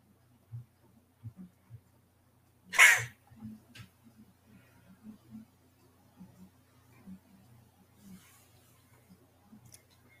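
A single sharp, explosive sneeze bursts out, loud and brief, surrounded by quiet, muffled low thumps and faint shuffling noises.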